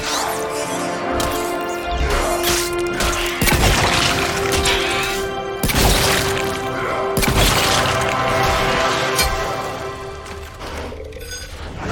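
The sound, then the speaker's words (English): Repeated heavy smashing impacts from a video game melee fight as a character who dropped his shotgun smashes an enemy with a pipe, loud thudding and cracking at irregular intervals over a sustained ringing tone and busy game noise. “Oh, he dropped his shotgun and he's smashing him with a pipe.”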